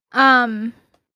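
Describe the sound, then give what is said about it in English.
A single dog bark, drawn out into a tonal, slightly whiny yelp lasting about half a second, loud, followed by silence. “That is my pup pup.”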